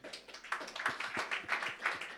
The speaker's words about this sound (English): I don't like this clap. Hiç hoşuma gitmiyor bu alkış. I don't like this clap hiç at all. Hiç hoşuma gitmiyor hiç.